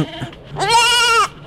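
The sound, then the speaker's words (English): A single loud bleat from a farm animal named Muff in the High FM radio studio, a quavering, wavering cry lasting just over half a second, preceded by a brief faint murmur. No one speaks. “Farmers are going to be given the chance to monitor their animals' welfare.”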